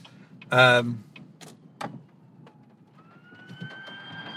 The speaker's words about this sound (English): And sorry, there's a fire truck behind me.